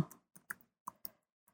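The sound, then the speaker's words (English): Quiet typing on a computer keyboard: a handful of sharp, irregular key clicks spaced a fraction of a second apart, fairly faint, with no voices. “Do you mind hearing these sounds of, you know, keyboard?”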